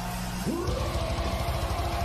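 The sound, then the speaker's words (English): A metal concert crowd at Hellfest roars through a wall of death: a dense, steady wall of yelling and bellowing, with one voice rising in a sharp shout over a thick, churning low rumble. “We're watching a Wall of Death video for those listening.”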